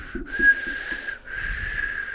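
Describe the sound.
A person whistles in imitation of a tea kettle: a steady, breathy high note, briefly breaking and then resuming as a long shrill tone, with no talking.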